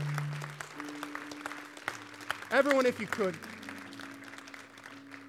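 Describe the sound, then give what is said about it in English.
An audience claps for God in a dense, crackling wash of applause that runs the whole clip, while a man speaks over it and sustained keyboard notes hum underneath. “Can we give God a clap for what he has done, for what he is still willing to do?”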